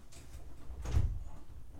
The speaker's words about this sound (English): Is this door locked?